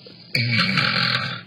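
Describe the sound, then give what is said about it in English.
A single rough, throaty snort made by a human voice imitating a pig, a gravelly nasal grunt lasting about a second that starts abruptly and fades out. “Sounds like a pig.”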